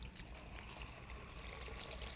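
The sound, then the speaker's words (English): Tap water runs steadily into a bathroom basin after a few New Quick Lux soap flakes are poured in to wash stockings: a continuous splashing hiss with a soft, even texture that holds for a couple of seconds, with no voices over it. “I'll just pour a few of these flakes into the basin and turn on the water.”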